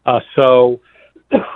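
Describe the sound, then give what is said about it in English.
A few loud, throaty coughs from a person speaking on the radio come in quick bursts, rough and voiced like someone clearing their throat, with a short quiet gap before the last one. “excuse me, I'm sorry to cough on the air.”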